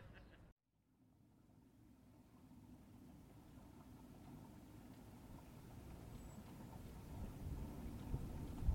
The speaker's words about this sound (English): That's gotta be the boat, right? Only one out here.